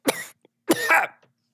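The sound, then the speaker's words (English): Two harsh coughs from one person, each a sharp burst trailing off raggedly, about half a second apart, with a quiet breath between them and no talking. “I guess I'm coughing as well.”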